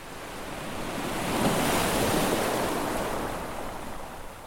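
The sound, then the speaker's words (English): Ocean waves wash onto the shore in one broad swell of surf, rising to a roar midway and then easing off, with a steady hiss and no voices. “Imagine the sea with its vast beauty.”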